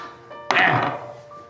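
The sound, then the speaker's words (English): A twenty-sided die (D20) lands on a table with a sharp thunk and a short tumbling rattle that fades within half a second, over a faint, steady tonal hum. “Can you roll a D20 for me, please?”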